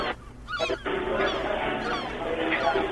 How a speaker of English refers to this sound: Oh, I'm calling him back. I've got seagull sounds now, motherfucker. We're going to make this believable.